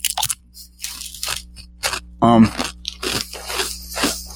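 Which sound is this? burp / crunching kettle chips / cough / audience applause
crunching kettle chips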